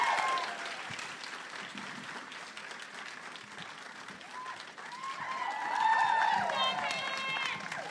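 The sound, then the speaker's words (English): An audience breaks into sustained, dense applause for Sutton Foster, star of a comedy series, a steady wash of many hands clapping, with excited whoops and cheers swelling louder over the final few seconds. “Everybody give her a big round of applause.”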